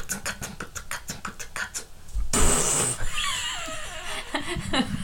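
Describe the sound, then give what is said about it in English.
A voice beatboxes by saying "boots and cats" really fast: a quick, steady run of kick-and-snare pulses, then a loud hissy burst followed by squeaky, wavering vocal noises, all fairly loud. “You say boots and cats really fast to listen.”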